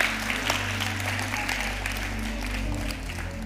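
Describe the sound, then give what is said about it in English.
A church audience claps hands during a service in a dense, steady patter of many overlapping claps, continuous and moderately loud over a low sustained hum, with no one speaking. “Clap your hands if you know it's true.”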